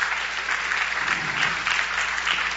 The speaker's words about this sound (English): Could you clap your hands for these brothers? Amen. Thank y'all so much.